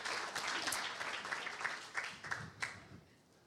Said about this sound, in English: Let's give her a clap.